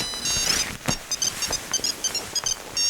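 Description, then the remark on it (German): A telephone rings early in the morning with a rapid electronic trill, short high-pitched bursts repeating in quick rhythmic pulses, fairly loud, with no one speaking. “Am nächsten Morgen klingelte im Adlernest empfindlich früh das Telefon.”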